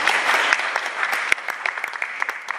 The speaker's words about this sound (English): And if you didn't get a handout, this fine gentleman up here has handouts, so we can give him a round of applause.